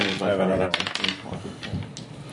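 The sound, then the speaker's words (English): Small hard dice clatter and tumble across a table in a quick burst of sharp clicks as they are rolled for a firearm attack in a game, then scatter into lighter rattles, with a voice murmuring at the start. “does anybody have any percentile dice I could use?”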